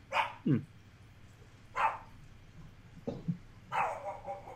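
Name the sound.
dogs barking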